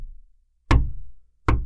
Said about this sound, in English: One thing I remember in particular as a child, and to this day still puts me on edge, is knocking from a place I don't know is coming from.